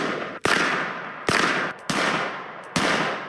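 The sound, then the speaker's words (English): Four loud, sharp gunshots fired by Bailey in a campaign ad, aimed at a piece of paper tacked to a tree reading "I will not comply", protesting Illinois' assault weapons ban. Shots ring out at uneven intervals, each crack followed by a trailing rumble that fades before the next. No voices are heard. “Bailey takes aim and shoots at a piece of paper tacked to a tree that said, "I will not comply."”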